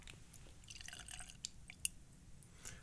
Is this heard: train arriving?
no